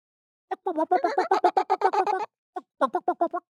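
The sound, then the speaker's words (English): A person imitates the chuckle sharp-tailed grouse make when they take off from the grass: a rapid run of about a dozen clucking notes, a brief pause, then a shorter burst of five or six, fairly loud. “when they come out of the grass, first of all, the first thing you want to listen for is a chuckle, because sharp tails”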